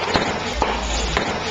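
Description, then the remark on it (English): A few sharp, irregular pops of fireworks crackling outside, scattered over a steady low rumble and noisy background. “And this enormous mastiff finds comfort sitting on his owner's lap and gets a reassuring cuddle as fireworks crackle outside.”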